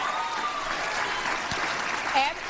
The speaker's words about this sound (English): Oh, big applause. Big fucking applause.